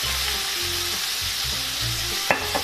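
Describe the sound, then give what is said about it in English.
A little splash of white cooking wine sizzles in a hot pan with a steady, bright hiss throughout, low rumbling underneath and a couple of sharp utensil clicks near the end. “Just a little splash of white cooking wine.”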